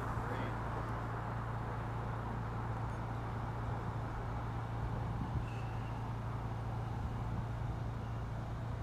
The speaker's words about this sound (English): Okay, maybe, is this the lead car? There's been a couple of cars here that have been coming around the corner.